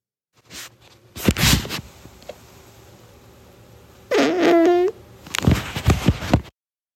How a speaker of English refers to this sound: Let's analyze this fart and see what's going on.